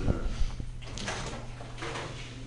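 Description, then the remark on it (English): A door swings shut with a few low thuds and soft scraping rustles against a steady room hum, with no one speaking. “I'm gonna wait for that door to close to tell this joke.”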